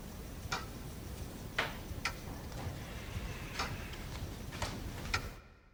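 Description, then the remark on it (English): A recorded clock, altered so each tick falls just slightly slower than once per second, ticks steadily on its own with crisp ticks, over a soft background hiss with no voices. “I recorded a clock and then manipulated it to be just ever slightly slower than 1 second a tick.”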